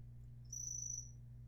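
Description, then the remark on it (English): A single chirp from a real cricket, a thin high-pitched trill lasting under a second, over a steady low background hum; nobody speaks. “That is an actual cricket.”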